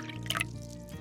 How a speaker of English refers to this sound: I'll pour you a drink and let's get started.